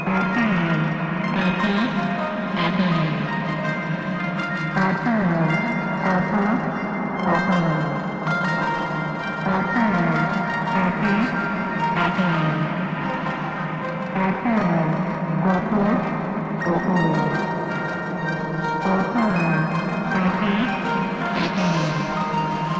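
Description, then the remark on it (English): A dense, droning ambient tape loop run through a Mimeophone delay, which a Pico clocks at a regular rate, with smeared, repeating delay echoes, the texture pulsing in regular steps as the repeats stack up. Steady and fairly loud throughout, with no voices. “So now I'm using the Pico to also clock the mimeophone. Now that it's a regular clock, just to hear how it sounds.”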